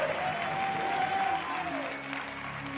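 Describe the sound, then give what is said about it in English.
An audience bursts into sustained, dense applause as praise to God, a steady wash of many hands clapping at even loudness, with a faint held tone ringing through part of it. “Now you give Him a praise that seals it and lets Him know you're ready.”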